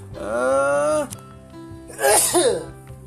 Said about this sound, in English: I had to sneeze.